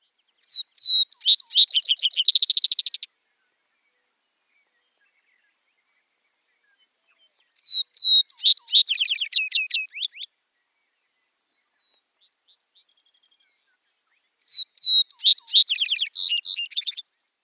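A Vesper Sparrow sings three separate phrases with long pauses between. Each opens with a few clear, high whistled notes and breaks into a fast, buzzy trill, heard alone.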